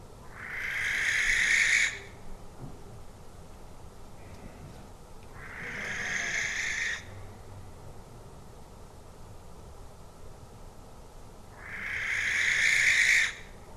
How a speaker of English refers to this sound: That was a barn owl, Tito alba, calling in France. It was making either an advertising call or a distress call.